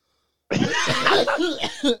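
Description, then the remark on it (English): A person coughs in a harsh, raspy fit lasting over a second, loud, with a throaty, strained edge and a final choked push at the end. “What does that do with you coughing?”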